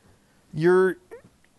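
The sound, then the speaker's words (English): A dog that has just been stepped on lets out a sharp, drawn-out yelp followed by a brief, higher whimper, fairly loud against an otherwise quiet background. “sorry about that, dog. I just flopped pee on my the dog. Foot down on him.”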